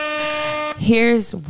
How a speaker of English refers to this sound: We need some air horns for that.